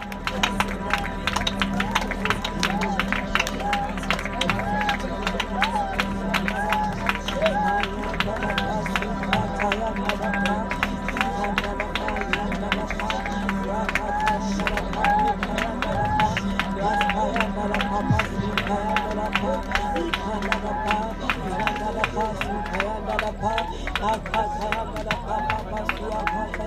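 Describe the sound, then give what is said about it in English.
A crowd claps hands steadily and continuously while many voices pray aloud at once against every spirit of infirmity. It is a dense overlapping babble under the constant sharp patter of clapping. “Clap your hands and pray like never before.”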